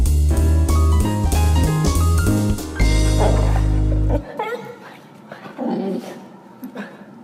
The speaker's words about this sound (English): Boisterous. It's kind of more of just like a loud bark. I think I heard it. A little bit of Chewbacca thrown in there.